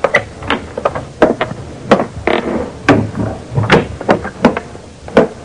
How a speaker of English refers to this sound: I waited a while. Then I quietly opened the hall door.